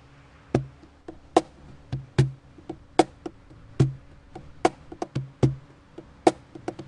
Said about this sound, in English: I'm going to be singing and also playing along on the cajon